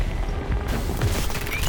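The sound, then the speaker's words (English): A thick, rumbling explosion effect rolls on for a couple of seconds, with a steady low roar and crackling debris-like noise and no voices: General Abby's dazzling red light bursting out of black smoke like fireworks and scattering across Jura City. “A dazzling red light suddenly shone out of the black smoke, exploded like fireworks, and scattered to the entirety of Jura City.”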